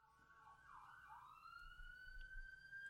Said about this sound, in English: Something going down in the neighborhood. Woo! Pause for ambulance. Thank you, ambulance. No idea what that's about.